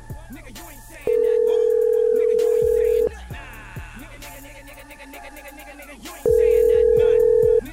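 Two long, steady ringback tones of a phone call to Elves for Hire ringing before voicemail answers, each lasting about two seconds at a flat mid pitch, separated by a few seconds of quiet line hiss.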